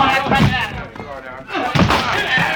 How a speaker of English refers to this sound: We've got to break that door in.